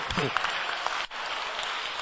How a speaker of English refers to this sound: Wow, clap for this sister. She doesn't watch movie.